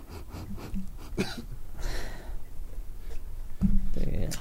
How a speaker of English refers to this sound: He's still trying to sniff his box.